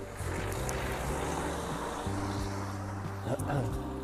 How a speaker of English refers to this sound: apologies, there's just a car passing.